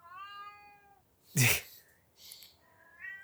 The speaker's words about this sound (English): That's your cat.